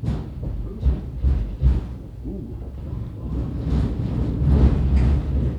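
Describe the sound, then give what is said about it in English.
A train rumbles by overhead on elevated tracks above an old World War I era Milwaukee Road passenger station building used as a club, a continuous low, heavy roar with clattering surges that grows slightly louder toward the end. “And yes, trains pass overhead.”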